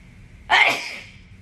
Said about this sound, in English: Hold on, I'm gonna sneeze.